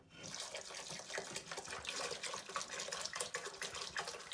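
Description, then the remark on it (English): Water pours steadily into a pan of eggplants and salt, a continuous splashing gush with bubbling texture that stays fairly loud for several seconds, with no talking. “So what I just did is I poured water and I put my hand and I pressed down and the water's not covering them all.”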